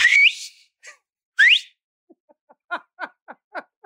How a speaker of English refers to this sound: This is the best whistle in sports. It's better than if you actually had one of those blow whistles.